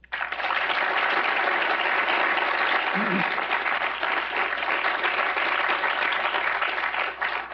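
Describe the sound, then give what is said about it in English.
A crowd applauds steadily for Senator Mike Lee, a dense wash of clapping that stays loud and even for several seconds, with no pauses. “How about another round of applause for this great patriot?”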